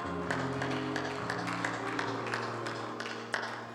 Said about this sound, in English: Thank you, Jesus. Thank you, Jesus. And with a hand clap, you can be seated.